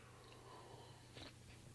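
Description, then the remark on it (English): A single quiet sip of coffee, a brief soft slurp against a low background hum, with no one talking. “So hold on, I'm going to take another sip of coffee.”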